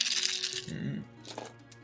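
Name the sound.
dice being rolled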